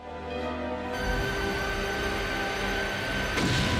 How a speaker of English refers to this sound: Oh, and now it's cutting through some warehouses. Lovely explosions.